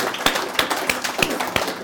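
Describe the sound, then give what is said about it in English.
A group of people at a networking event applauding, with a dense wash of hand claps and a few sharper claps landing in a steady rhythm. Moderately loud, with no talking. “Can we just give him a round of applause for that, please?”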